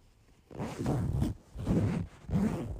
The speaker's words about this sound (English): That is so easy. That is a zipper. Oh. Specifically, the zipper from your computer bag.